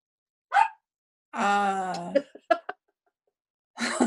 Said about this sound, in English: My dog is your dog answer. My dog says yes.